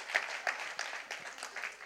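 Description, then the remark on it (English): An audience applauds a skit team after their performance, a steady wash of many hands clapping at once, dense and crackly with a few sharper claps standing out. No voices are heard over it. “Round of applause for our skit team.”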